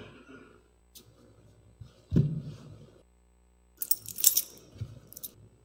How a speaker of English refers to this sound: Anybody know what this is? These are keys.